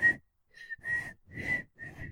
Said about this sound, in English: You want me to try it? Hold on. No, you can't whistle. Don't do it.